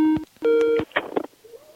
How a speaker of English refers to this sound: The phone call coming in.